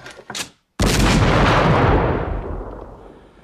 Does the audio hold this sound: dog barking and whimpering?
no